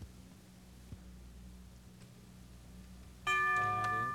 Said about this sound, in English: The bell is tolled.